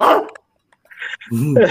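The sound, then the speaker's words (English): A person imitates a dog barking, with a loud vocal bark, a brief pause, then breathy yelps and a longer, wavering growly bark, all fairly loud. “I wasn't gonna bark at him. I was like, me playing this. I would have barked at him.”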